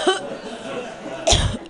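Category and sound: human body sound, coughing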